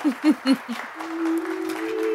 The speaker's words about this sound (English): Some of them appear to be scowling as they clap, but like they've been told that this is what is important right now. A boost in morale is what's needed. You get the feeling. Thank you for your half-hearted applause, folks.